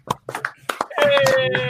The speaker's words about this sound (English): They're all clapping for you. That's them all. Round of applause.